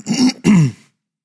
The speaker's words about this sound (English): Sorry if I clear my throat a lot this morning. It's just that time of year, I guess.